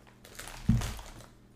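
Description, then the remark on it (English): A Cabaret crisp and buttery cracker being crunched: one sharp, brittle crunch with a dull low thud, followed by a brief crackly tail that fades quickly. No voices. “It is Cabaret crisp and buttery crackers.”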